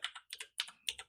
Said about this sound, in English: I'm typing very slowly today because I'm tired.